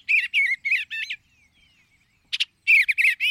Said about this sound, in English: Who wouldn't want bluebirds nesting close by? Flashes of azure as they fly, their mellow, burbled songs.